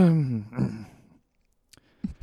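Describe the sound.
A voice imitates Dr. Evil's disappointed sound, halfway between clearing the throat and saying excuse me: one low, voiced, drawn-out sound lasting about a second, then silence broken by a few faint clicks.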